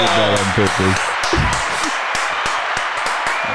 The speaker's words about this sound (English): Hit the applause.